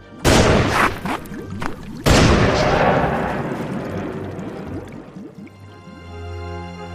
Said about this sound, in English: Two gunshots ring out in the empty streets of Driftwood Gulch.